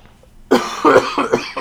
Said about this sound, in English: Oh, my God, I got to start muting when I cough.